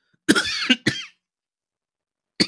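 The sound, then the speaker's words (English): A loud cough bursts right into the microphone in two harsh hacks, followed by a brief pause and the start of a third cough. “I should have hit my cough button for that.”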